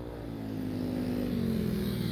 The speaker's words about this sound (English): Good grief, there's a motorbike in my intro last week.